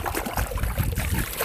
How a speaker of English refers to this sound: That's me playing in the pool right now. I hope you guys can hear all that splashing around. Yeah, that's me in the pool.